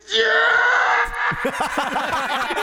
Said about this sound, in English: All right, or what about screaming?